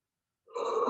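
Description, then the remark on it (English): A single harsh, raspy gasp of agonal breathing from a CPR training mannequin simulating cardiac arrest starts halfway through and holds steady to the end, fairly loud, with no talking. “The sound that you're hearing now is called agonal breathing.”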